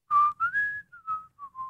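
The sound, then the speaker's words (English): A person whistles to mimic a ball thrown downfield by Brock sailing through the air: a clear tone climbs briefly, then glides slowly downward over several short connected phrases, with no talking. “All right, Brock's going to throw. There goes the ball downfield.”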